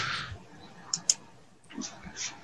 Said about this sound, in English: And she keeps hitting the button and typing and hitting the button.